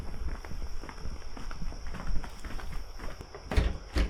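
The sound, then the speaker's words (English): Footsteps approach the doors of the Institute over a steady outdoor hiss on a rainy August morning, then a few sharp clunks and rattles near the end as someone tries the wrong door, which doesn't open; no one speaks. “Wrong door.”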